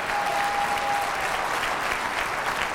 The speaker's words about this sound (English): I'd like a better amen on that. I'd like a better amen and a better clap than that.